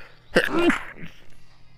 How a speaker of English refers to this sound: Oh, I'm going to sneeze.